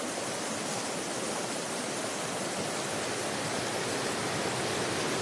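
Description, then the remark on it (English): A steady, dense roar of rushing river water churning over rocks, loud, holding an even, unbroken hiss from start to finish with no voices. “On either end, a fierce river flows, sometimes narrow and crashing over rocks, then plummeting down ridges before stretching lazily as a yawn into a vast body of water.”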